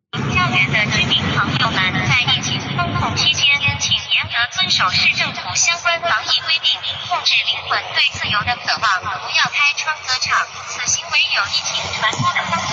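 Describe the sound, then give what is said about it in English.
A drone's loudspeaker over Shanghai, China broadcasts a continuous amplified voice announcement in Chinese telling people to comply with COVID restrictions, tinny and echoing across the city, with a low engine or rotor hum beneath it early on. “And so China is responding in Shanghai with drones that are announcing it.”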